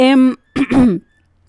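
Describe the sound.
A fairly loud voiced throat clearing, then after a brief pause a rough cough-like burst, followed by quiet.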